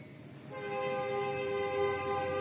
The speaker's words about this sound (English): And right now, we're going to be respecting the authority of the train whistle.